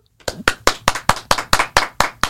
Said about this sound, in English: It's the clapping for me.